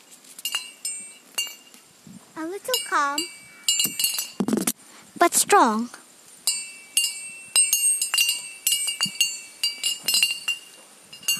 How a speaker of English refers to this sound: Now, let a huge smile form on your face. As you hear the bell,